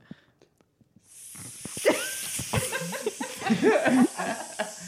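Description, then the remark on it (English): A Febreze aerosol air freshener sprays in one long, steady hiss lasting several seconds after a few faint taps, while people talk and laugh over the spray. “will you spray some Febreze in here or something?”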